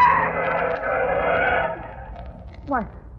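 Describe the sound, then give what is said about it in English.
A car engine roars loudly as it approaches and hits a person, then fades and thins out, followed by a brief sharp descending screech near the end. “The car. The car is coming. Coming nearer.”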